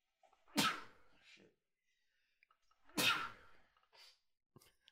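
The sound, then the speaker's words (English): A man sneezing repeatedly: two loud, explosive sneezes about two and a half seconds apart, each a sharp, harsh burst trailing into a breathy hiss, with faint small sniffs and rustles in between. “This guy sneezes 3 times consecutively.”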